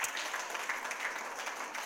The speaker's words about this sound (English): Those of you that are joining us online, can everybody clap really loud for the online group?